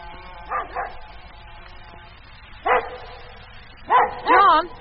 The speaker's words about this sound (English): What's the matter with the dog? He's been going on like that for nearly 20 minutes. How should I know? Well, you better go out and see. There might be a dingo hanging around the pens.